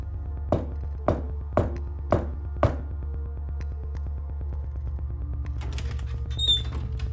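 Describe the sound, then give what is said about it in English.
Five firm knocks on a door with a light on behind it and a G on the front, in a slow, even rhythm, distinct over a low steady hum, followed by a few seconds of quiet shuffling. “Should we knock? I mean, clearly someone turned that light on.”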